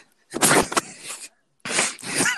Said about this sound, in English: can you stop breathing that hard? God damn.